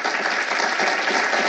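Steady, dense applause from an audience, a continuous wash of many hands clapping at an even loudness for the whole moment, with no voices rising above it.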